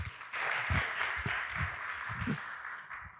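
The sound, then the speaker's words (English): An audience gives a warm round of applause at a morning church service, welcoming a guest speaker, many hands clapping in a steady, dense patter that holds at a moderate level for a few seconds before easing slightly. “So I just want to invite you to just give a nice warm hand clap”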